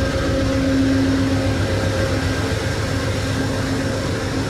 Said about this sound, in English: So we've got locomotives 176 and 163 from the fleet idling away here at the station.